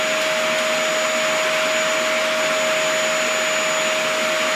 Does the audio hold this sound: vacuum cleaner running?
yes